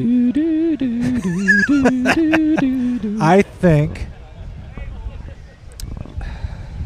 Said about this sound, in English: Oh, it's windy out here. We got stuff blowing away here. Hold on.